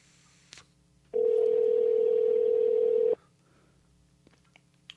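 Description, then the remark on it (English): A phone line rings out: one steady two-second ringback tone, loud, followed by quiet with no pickup and no voices. “Niggas ain't answering the phone.”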